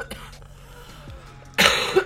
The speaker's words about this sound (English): Listen to this actual cough.